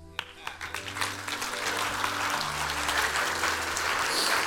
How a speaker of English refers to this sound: Yeah, thanks, guys. Oh, we can clap.